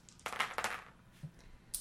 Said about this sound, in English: Apparently I'm dropping dice everywhere.